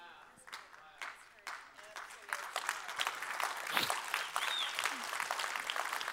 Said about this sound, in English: Y'all can't clap. Y'all get me started. We'll be here all day.